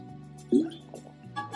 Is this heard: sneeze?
no